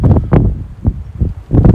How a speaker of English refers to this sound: It's pretty windy, not that cold.